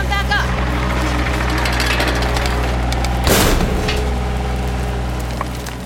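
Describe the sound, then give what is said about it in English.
A loud, sudden crash of splintering wood and collapsing debris as a roof caves in by a door bursts out over a steady low rumble, preceded by dense crackling and clattering, then fading back into the droning background. “The roof caved in by the door.”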